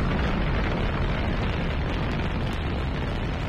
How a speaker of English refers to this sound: Ignition sequence start. 6, 5, 4, 3, 2, 1, 0. All engine running. Liftoff.